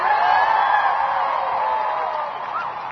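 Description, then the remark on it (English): A large protest crowd of about 20,000 strikers on Wurundjeri country in Australia, part of a nationwide strike, cheers in a steady, dense roar of many voices, loud throughout, with scattered whoops rising above the din. “massive this crowd is, everyone!”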